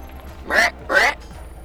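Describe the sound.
A voice imitates a crow while going down a mountain, giving two harsh, nasal caws in quick succession, fairly loud, with a short pause between them and no other talking.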